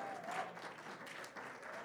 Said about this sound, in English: Amen. Hallelujah. Go ahead, clap unto the Lord. Amen. Glory to God. Hallelujah.